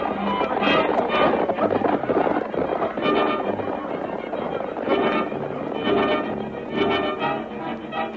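Loud, dense galloping of horses' hooves, a continuous rapid pounding that sounds like a troop of mounted soldiers racing in pursuit for the whole stretch.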